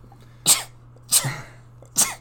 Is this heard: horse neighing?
no